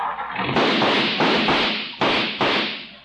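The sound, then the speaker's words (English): A noisy car backfires in a run of loud, sharp bangs, about five uneven pops over a rough, hissing engine rumble, with no voices. “My, my, what a noisy car.”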